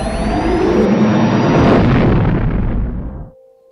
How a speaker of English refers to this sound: You're about to jump into wild space, and right as the hyperdrives spool up, you have that little Ocriff moment of we're jumping blind into wild space, and the ship takes off.